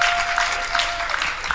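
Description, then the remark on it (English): An audience claps for the UFSS and the sessions, a dense wash of many hands with no voices on top, holding an even loudness for a couple of seconds. “Is it okay to clap for them and clap for the sessions?”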